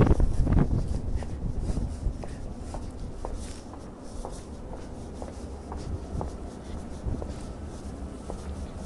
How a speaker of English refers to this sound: There's something weird going on with the weather. It's suddenly got really dark. The clouds have come in and it's got really windy. And everyone is like heading for cover.